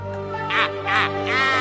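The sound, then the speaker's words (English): A heron gives three harsh, rasping squawks in quick succession, fairly loud, over a steady low background hum. “recognizably the bird known as a heron, with one unusual feature, which is that I don't know what kind of noises actual herons make,”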